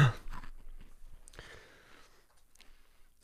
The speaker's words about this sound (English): Guy gives me three crispers, two of which are broken. I figured this would be a great thing to chew into the mic.